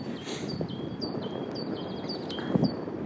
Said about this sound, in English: There is spring in the air, strangely, although it's middle of February. A chirping bird takes care of that. But it's really windy and not that warm, even though it's not as cold as it's normally in February.